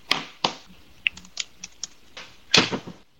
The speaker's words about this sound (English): I love hearing the typing. You just hear little keys happening. Yeah, I'm doing that right now.